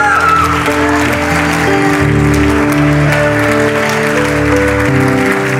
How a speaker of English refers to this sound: Clap your hands for him.